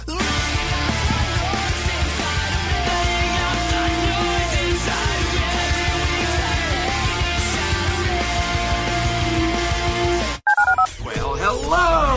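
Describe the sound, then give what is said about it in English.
Telephone keypad dialing tones beep in a steady sequence, loud, blended into a dense musical backing that runs continuously before a brief cutoff and a short final burst. “Dial the phone.”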